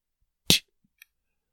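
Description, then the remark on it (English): A single sharp, loud crack of a rock striking a house window, followed a half second later by a faint, brief high-pitched tick. No voices are heard. “You one of these rocks, hit the window.”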